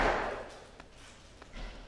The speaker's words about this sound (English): It's my son probably knocking on the door.